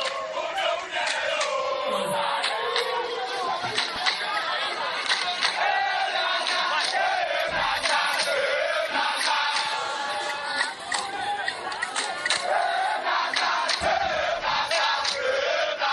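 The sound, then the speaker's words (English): A dense crowd of soccer fans in Ghana roars and cheers in the streets after the Black Stars beat the Super Eagles to qualify for the Qatar 2022 FIFA World Cup, with overlapping shouts, whistles and chanting voices at a steady, loud level throughout. “An exceptional jubilation throughout Ghana by soccer fans changed the country's atmosphere last evening after the Black Stars defeated the Super Eagles to qualify to Qatar 2022 FIFA World Cup.”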